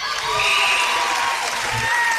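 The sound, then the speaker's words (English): A basketball crowd cheers in a steady, loud roar of mixed voices and shouts, with some applause woven in, holding constant through the whole stretch, in the fourth quarter of a Cougars game as a fouled player gets two free-throw shots. “This crowd is really getting into it.”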